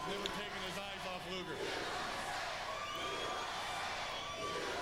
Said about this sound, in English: Crowd obviously fully behind Lex Luger, as you can imagine.